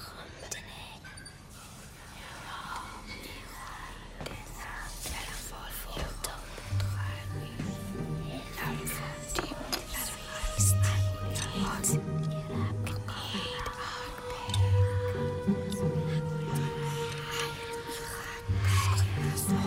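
Layered, unintelligible whispering of keys calling to children swirls continuously for about twenty seconds, breathy and hissing, while low rumbling pulses and tonal drones swell beneath it, growing denser and more unsettling toward the end.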